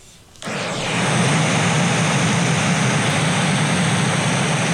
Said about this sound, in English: I was gonna say I was doing white noise for a while until I discovered brown noise. Play a little sample.